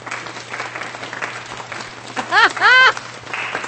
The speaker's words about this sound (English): When you're watching a professional at work, man, you just got to appreciate. That's what people do for Tiger Woods. That's the kind of clap dude I just did